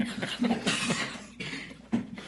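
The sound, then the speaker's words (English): A person coughs several times, rough, breathy bursts spaced about half a second apart, with no speech around them. “You got to hit the cough button.”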